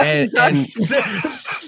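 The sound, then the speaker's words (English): A person imitates a snake, a short, animated run of hissy, breathy noise mixed with voiced, sing-song vocal tones, lasting under two seconds. “snakes, you silly. Snakes. Look at me slither.”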